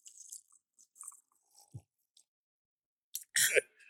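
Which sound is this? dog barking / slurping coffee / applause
slurping coffee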